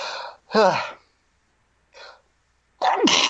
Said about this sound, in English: I'm going to sneeze.